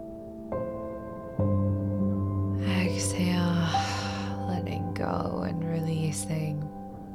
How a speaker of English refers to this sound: Inhale, breathing in. Exhale, breathing out. One more inhale, cool breath in.